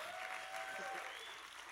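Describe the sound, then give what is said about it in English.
An audience claps steadily throughout, a dense, even wash of many hands at a fairly constant level, with faint thin whistling tones drifting over the applause. “Come on, if you're going to clap, do it well.”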